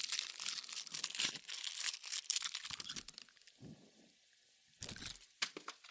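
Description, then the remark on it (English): Sharp crunching and crackling of a hard candy cane being eaten, a dense run of brittle snaps that pauses briefly, then returns in a few loud bursts near the end. “Oh, crunch.”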